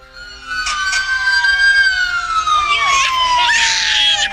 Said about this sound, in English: Oh, he did not like it. Hated it. Well, did he not like the sirens and all the fire?